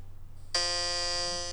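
A loud, harsh game show buzzer blares suddenly after a brief quiet moment and holds steady as one continuous, rasping tone until the end, with no voices heard.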